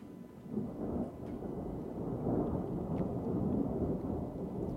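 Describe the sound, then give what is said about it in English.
Deep, rolling thunder rumbles continuously beneath a steady wash of rain, the low roar swelling and receding slightly over a few seconds with no voices present. “Here comes the rain.”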